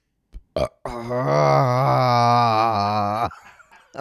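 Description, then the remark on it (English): A long, loud burp rumbles out, sustained for over two seconds with a wavering, throaty tone, preceded by a couple of short breathy gulps, as the person tries to expel all the air without tasting it. “Fuck, I have to burp again, and I don't want to.”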